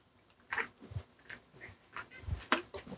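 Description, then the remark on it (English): Sips of a fizzy drink, an AHA caffeinated seltzer: several short slurping mouth noises and low gulps spread over a few seconds, quiet and wet-sounding, with no one talking. “Sorry, just took a sip of AHA. Caffeinated seltzers, harder to find lately.”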